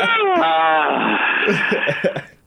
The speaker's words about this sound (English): pardon me while I yawn.